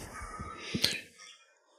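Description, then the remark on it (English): During a trip to New Orleans, a man snores once loudly, a raspy, rattling breath that swells to a short snorting peak and then trails off into quiet, heard on its own without any talking. “I can hear the snore from here. He's a loud snorer, everyone.”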